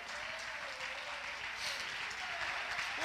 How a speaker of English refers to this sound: If you believe it, jump to your feet and clap your hands and praise him.